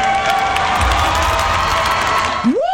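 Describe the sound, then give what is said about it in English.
A large crowd at a Miss America pageant cheers loudly and steadily after a contestant criticizes Trump, a dense roar of voices with scattered whoops, holding at full volume for a few seconds before a rising shout breaks through at the end. “That was just some Miss America contestant blasting Trump and the crowd cheering.”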